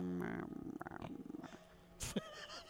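A voice imitates a cat, starting with a drawn-out meow-like tone that rolls into a rhythmic, rattling purr, then a sharp breathy burst near the end.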